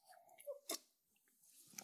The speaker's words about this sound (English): I'm taking a sip of my wine. Please excuse me.